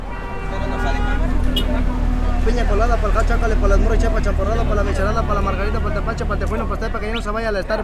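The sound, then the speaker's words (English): A steady low rumble of idling cars and trucks stuck in line at the border near Tijuana, continuous, while vendors wander among the vehicles and a crowd of voices calls and chatters over the engine drone throughout. “The wait at the border has created an entire economy of vendors who wander through the mass of idling cars and trucks, offering their goods to people stuck in line.”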